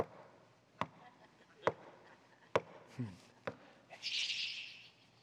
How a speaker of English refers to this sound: They just keep knocking.